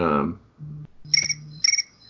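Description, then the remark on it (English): A phone notification chirps twice, two short, bright electronic trills about half a second apart, over a low hum. A voice is briefly heard just before. “Once again, my phone's not excited, so...”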